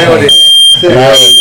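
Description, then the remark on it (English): A smoke detector fire alarm, set off, sounds a shrill, high-pitched electronic tone that holds steadily through most of the moment, while voices talk loudly over it. “Fire alarm set off.”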